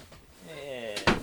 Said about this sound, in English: Let me shut this door real quick.